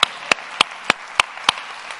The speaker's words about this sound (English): Amen. Somebody ought to clap your hands and say amen.